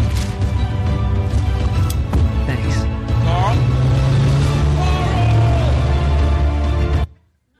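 A car rolls up with a loud engine rumble while swelling dramatic music plays over it, the whole scene dense and full before cutting off abruptly into silence.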